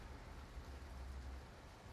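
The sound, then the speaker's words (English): Soft, steady rain falling outside, a continuous even hiss with a low rumble underneath, fairly quiet, with no voices or other distinct sounds over it. “And I was reading and just listening to the rain.”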